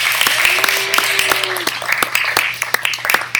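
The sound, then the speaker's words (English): A church audience applauds its new church leadership steadily, many hands clapping in a dense, continuous patter that holds at an even level throughout, with a faint low hum underneath. “Would you give them again a round of applause?”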